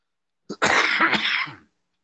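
A single harsh cough burst with a brief sharp onset, followed by a raspy, throat-clearing rumble lasting about a second, with no talking.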